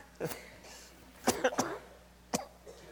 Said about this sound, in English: We're not contagious, we're just coughing.